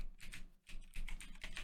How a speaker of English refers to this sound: Listen, if you guys want to go again, why do I keep typing Hull A in?